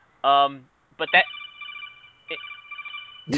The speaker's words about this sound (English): I'll come back in a second. I've got a phone call. Give me a minute.